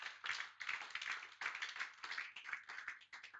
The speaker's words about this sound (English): Can you give God a clap of it?